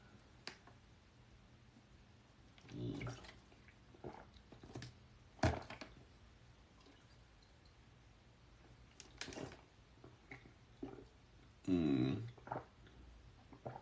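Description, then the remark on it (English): Someone drinks water: a few scattered gulps, swallows and soft bottle handling noises, spaced several seconds apart with no talking. “Wait, do I have more water left? A little bit more water.”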